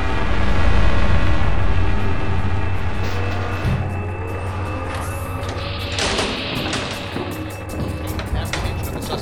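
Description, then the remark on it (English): A huge hovering tactical FIS mobile command post vehicle drones steadily with a deep, loud engine hum and whining tones, while occasional mechanical clanks and a brief hiss of air rise over the constant rumble. “That's the tactical FIS mobile command post. Look at that monster! I've never seen a big beast of a machine like that hover off the ground!”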